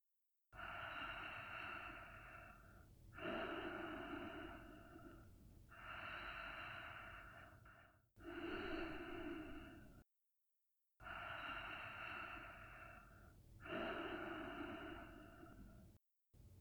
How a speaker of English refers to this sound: Direct the breath across the back of the throat and listen to the sound of the breath moving in and out. That hissing noise you might hear is the Ujjayi breath.